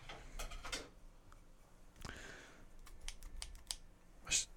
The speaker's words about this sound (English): Could you pass me those scissors too? Boy, howdy, I can.